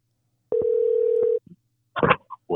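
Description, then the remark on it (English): A single steady ringback tone from an outgoing phone call hums for about a second, clear, followed after a short pause by a voice briefly speaking. “So with that said, let me just go ahead and hit call right here.”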